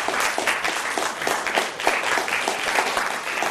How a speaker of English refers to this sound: Put some applause on that for the bath man, everybody. Put the applause on him. We need the applause on him.